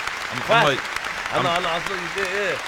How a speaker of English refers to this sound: A lot of applause, man.